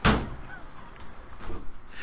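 A sharp, heavy thump of a chair being shuffled and bumped around, followed by softer scraping and rattling and a second dull bump, with no one speaking.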